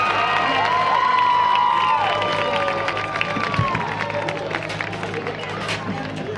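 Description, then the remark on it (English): A crowd applauds and cheers for the Columbia Central High School Marching Band and the Lincoln County Falcon Band, with steady, dense clapping, sustained shouts and a few whistle-like calls on top. It stays loud throughout, then eases slightly toward the end. “Please give a big round of applause to our band and to the Lincoln County Falcon Band.”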